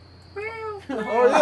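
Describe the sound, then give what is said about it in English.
A cat in a kitty cage meows twice in quick succession, a clear drawn-out mew followed by a louder, rougher cry that rises in intensity, with a faint electrical hum underneath. “Oh, and then in the background, that's the kitty cage.”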